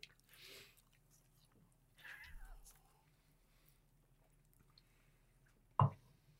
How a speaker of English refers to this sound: So the experiment now is we're going one bite. One bite. One bite of chicken and then a sip of crusher. Yep. The way KFC wants us to do it.